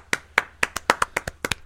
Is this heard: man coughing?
no